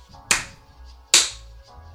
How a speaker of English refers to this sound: All right, see, when you do it like that, though, you just... That's rude. Even your claps is condescending.